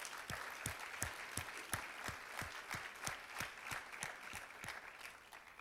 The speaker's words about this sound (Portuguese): Aplauda ao Senhor que Ele merece, Ele é bom.